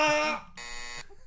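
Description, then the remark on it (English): A short, loud shout cuts off and is followed by a flat, steady electronic censor bleep lasting about half a second, buzzy and rich in overtones. “I know, I just thought I'd bleep my own yells.”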